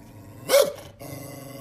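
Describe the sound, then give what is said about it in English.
A large dachshund in Mexico lets out a single loud, harsh bark, then keeps up a low, aggressive growl, with no one speaking. “It's the biggest wiener dog I've ever seen.”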